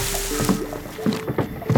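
A small boat moves across water at night, with soft splashes and gurgles from the hull or oars repeating in an uneven rhythm, moderately quiet.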